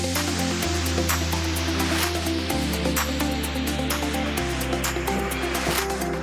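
Someone chugs a beer in one continuous, loud stretch of sloshing liquid and throaty swallowing lasting several seconds, with a low tone that shifts step by step as it goes. No talking.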